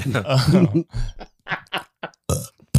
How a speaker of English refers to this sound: Unexpected burp. Why does burp sound like a fart?